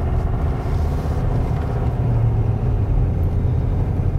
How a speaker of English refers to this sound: I will say the exhaust braking is coming in on the Ford, you know, just to give my final review on the exhaust brake, it is not the Ram exhaust brake, not even close, but it's better than the L5P.